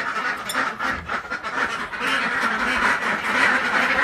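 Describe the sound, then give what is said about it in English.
A flock of ducks in a pen quacks loudly and continuously in the morning, their overlapping calls forming a dense, raucous chorus with no pauses and no one speaking. “That's the ducks greeting me this morning.”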